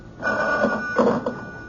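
A telephone rings in an apartment in a single sustained burst, its bright trilling tone buzzing steadily before cutting off. No one speaks.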